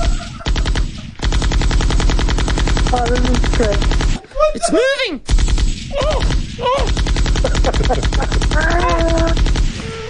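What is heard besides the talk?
machine gun fire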